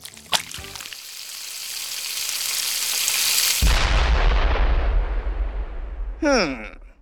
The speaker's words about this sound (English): That seems like a problem. Really? I thought it was great. It's a party favor. We can't eat it if it's exploding on the griddle.